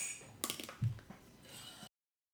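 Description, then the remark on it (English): A quick, light clink of glasses touching in a toast, followed by a soft thud and some faint clattery handling noise, fairly quiet, with no one talking. “Well, I guess that leaves us with one thing. Cheers. Cheers.”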